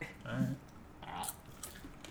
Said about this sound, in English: All right. These are like pretty good. These are like nothing. I'm taking another bite. More. It's crunchy.